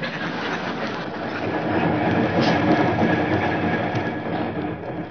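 A train rolls steadily along the tracks, its wheels clattering in a dense, continuous rumble with a faint rhythmic clickety-clack, loud and unbroken throughout with no voices.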